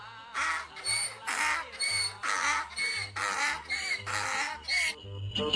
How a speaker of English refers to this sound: Love it. Donkeys.